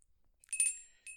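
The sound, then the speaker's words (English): A bright, metallic bell rings twice in quick succession, the first strike longer and fuller, the second shorter, with a clear high-pitched ringing tone and no voices. “I did that just because you were aiming for the bell.”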